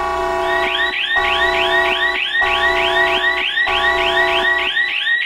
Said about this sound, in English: Yes, that is our lovely warning siren coming through loud and clear for everyone.